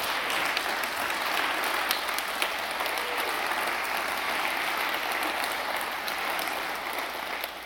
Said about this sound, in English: Let's stand and give the Lord a clap offering today. Yeah, give the Lord a great clap offering. Can you do that?